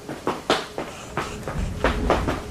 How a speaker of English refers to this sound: It sounded like little footsteps running on hardwood floors. The sound was coming from his living room, and then went into the kitchen.